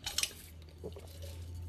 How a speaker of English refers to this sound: What you eating? I'm eating some blueberry cake.